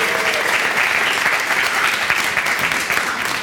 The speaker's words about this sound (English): Round of applause for these guys being on stage, first of all.